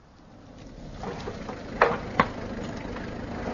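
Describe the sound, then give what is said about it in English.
A car carrying Giraud with Jacques Renaud and two gendarmes drives up, its engine rumbling in and growing louder before settling into a steady low idle, with two sharp clunks partway through. No one speaks. “A car's just driven up.”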